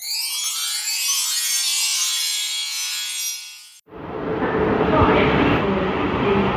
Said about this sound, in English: Hi, listeners. It's me. I'm at Woking Station.